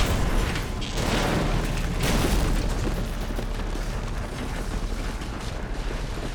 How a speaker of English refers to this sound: The SUV kept pushing the Corvette toward the edge of the bluff that the lighthouse stood upon. It all happened in a few seconds, but I saw it all in slow motion. The SUV thrust the sports car over the edge of the cliff and into the abyss below.